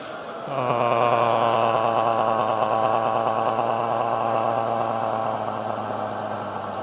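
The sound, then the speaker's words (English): A loud, sustained Tarzan-style yell, made during a breathing energizer exercise, begins after a brief pause and holds a steady pitch for about six seconds, its tone rippling rapidly as the upper chest is pounded with a loose fist. “We have a mandatory Tarzan yell here.”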